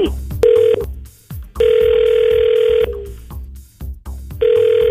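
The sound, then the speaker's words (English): A telephone call placed on the 1037 Play radio show rings: steady, buzzy mid-pitched ring tones come in repeated bursts, a short one, then a longer one, then another starting, over a low rhythmic music bed. “So we're going to call him up, see if we can find out what really went down.”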